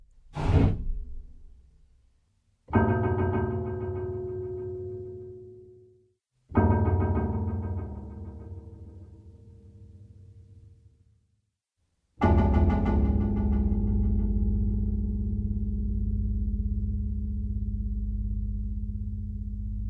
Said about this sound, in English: Here's the sound of the scuba equipment banging on metal. This is achieved by banging on the low piano strings.